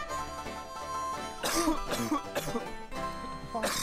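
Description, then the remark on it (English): A few harsh coughing bursts coming in quick uneven fits over several seconds, fairly loud against a faint steady background hum. “Who's coughing?”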